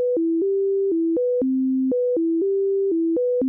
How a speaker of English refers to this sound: Deutsch recreated a simple set of tones alternating between low and high and sent it to the left ear.